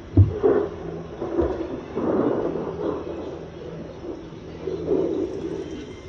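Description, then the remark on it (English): Low, rolling thunder rumbles continuously, swelling in a couple of heavier rolls before fading back, with no voices present. “And thunder.”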